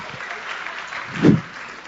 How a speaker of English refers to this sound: Clap your hands for my brother.